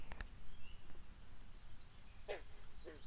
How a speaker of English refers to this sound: You can hear them, I hope. The frogs, the birds,